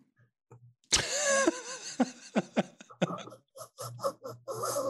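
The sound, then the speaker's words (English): A person coughs, opening with one loud, raspy hack followed by a string of shorter, choppy coughs that sputter on rhythmically to the end. “Do you got cough? You got phlegm too?”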